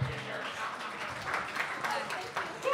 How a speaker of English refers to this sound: That's my agent. Clap it up for my agent.